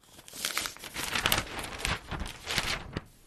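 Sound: newspaper page being turned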